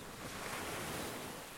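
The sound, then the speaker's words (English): Ocean waves crash steadily onto a beach in a continuous, rushing roar, with some wind mixed in. The surf holds an even level throughout and no one speaks. “Let that wandering mind serve as a gentle reminder to come back to your anchor. The sound of the waves.”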